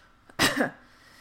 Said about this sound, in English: Ugh, that was too sincere. I've overshot the mark, and now I'm just clearing my throat into the mic. Whoa.